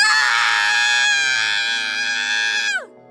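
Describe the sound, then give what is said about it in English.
A woman lets out one long, loud, high-pitched scream that holds steady for nearly three seconds, then drops sharply in pitch and cuts off. No talking, no other sounds. “Before Twilight could ask anything, Mare screamed.”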